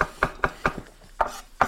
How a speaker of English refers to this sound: So I'm mincing garlic and ginger as small as I can with a knife.